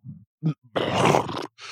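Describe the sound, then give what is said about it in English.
A voice imitates a Chicago Bulls coach's stifled burp in the locker room after a loss and after drinking beer: two short low grunts, then a longer rough, gravelly belch-like rasp lasting under a second, ending in a brief strained puff of air. “He's sitting there like, you know, the mouth burp.”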